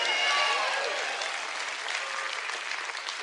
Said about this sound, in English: Oh, we win. There's 4 people clapping.